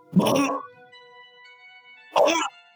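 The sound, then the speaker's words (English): Two short, gruff vocal barks from a person imitating a dog, spaced about two seconds apart, with a faint steady ringing tone lingering in the background between them. “Did you just bark?”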